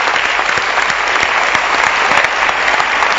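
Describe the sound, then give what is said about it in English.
An audience claps hands for a book by Bishop Dagwood Mills in steady, dense applause, many overlapping claps forming a loud, sustained wash of sound that holds evenly for the full three seconds. “Can you clap your hands for this book by Bishop Dagwood Mills?”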